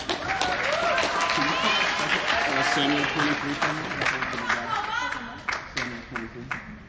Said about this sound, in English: Amen. Thank you. Awesome. A little bit of clap for her.